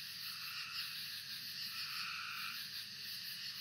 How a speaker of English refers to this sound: And later into the night, a choir of whistling spring peepers, quacking tree frogs, and katydids take over and sing till the wee hours of the morning.